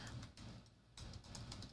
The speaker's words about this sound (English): Yeah, I was typing at the same time I was trying to think of words. I can't multitask.